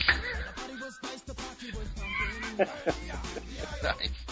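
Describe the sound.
A person's voice mimics a cat meowing, a string of drawn-out, wavering mews over about four seconds, moderately loud with some muffled vocal noise mixed in.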